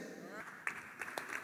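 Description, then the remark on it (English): A few scattered handclaps ring out from a church audience, irregular, while a preacher's voice keeps speaking underneath. “Let me keep the clapping, please, and let me really make you understand some stuff.”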